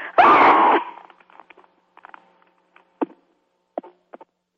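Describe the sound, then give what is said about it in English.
A single loud scream from a person bursts out and lasts just under a second, then trails off into near silence broken by a few faint scattered clicks and taps. “So for me to scream at all in public is really unusual.”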